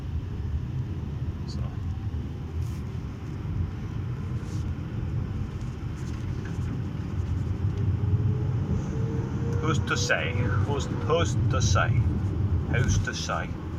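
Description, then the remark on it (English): Steady low engine and road rumble from inside a moving car, continuous throughout, with faint voice-like sounds and clicks breaking through over the hum near the end. “Damn, car.”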